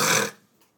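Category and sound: human body sound, small burp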